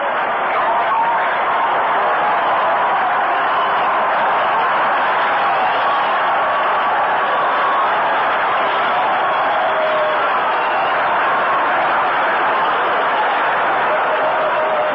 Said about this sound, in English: Fans are standing here applauding Nolan Ryan as he comes on to hit.